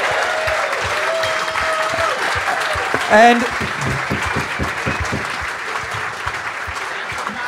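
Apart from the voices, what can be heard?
audience applause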